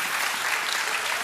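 An audience claps steadily in a church, a dense, even wash of many hands with no break, sustained at moderate loudness for the whole moment.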